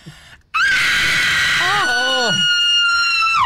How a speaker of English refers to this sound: Oh, wow, God. That's quite the scream. I reckon if you kept going, I reckon you'd have some luck there.